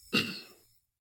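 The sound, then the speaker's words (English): One loud, forceful breath, a sudden breathy rush of air with a rough low edge that fades out in well under a second, with no talking. “So when it comes to day-to-day breathing, there is a quiet element, but even still, if I'm breathing like this.”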